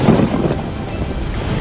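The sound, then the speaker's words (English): A roaring storm at sea around a rocking ship: dense, steady rushing wind and rain with a low rumble of thunder underneath, loud and continuous throughout, with no voices. “And after Jack woke up, he realized there was a great wind on the sea, a great storm.”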